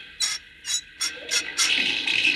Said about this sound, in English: Well, now, as soon as I set the water pipe into the boiler, you can turn the spigot. There. Now the water will go into the engine boiler. Give that spigot a whirl,